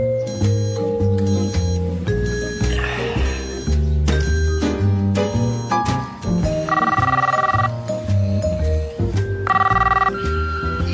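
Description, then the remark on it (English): A telephone rings in repeated bursts with short pauses between them, loud, over steady low sustained tones, in a film scene where the calls go unanswered while the phone's owner sleeps through the weekend and callers leave messages on the answering machine. No one speaks. “This means Peter is just sleeping the entire weekend and blows off all of his phone calls, like Lumberg about coming into the office, or Anne, who decides to break up with him on his answer machine.”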